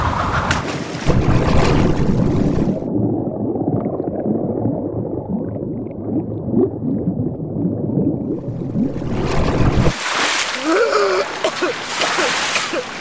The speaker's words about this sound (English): I plunge and hit the water hard.